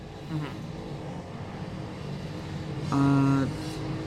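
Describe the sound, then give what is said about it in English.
Motorcycles pass by outside: a steady engine rumble with a brief buzzy whine early on, then a louder, high-pitched engine drone that swells for about half a second before fading. “There are motorcycles going by.”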